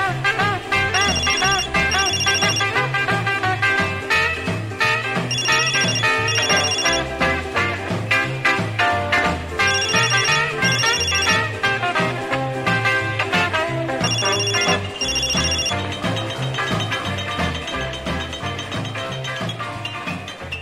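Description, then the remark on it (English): A cell phone rings in loud, repeated trilling bursts every few seconds, layered over a dense, continuous musical backdrop with no talking. “Damn, cell phone.”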